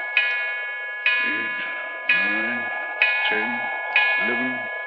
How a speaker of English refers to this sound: What a clock. Sounds like the knell of doom.